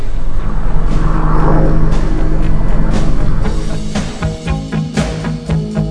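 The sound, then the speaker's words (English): A military-looking helicopter flying overhead around a house: a loud, steady droning rumble with low humming tones, easing off toward the end into a softer, pulsing thump. No one speaks. “No, it's a military looking helicopter.”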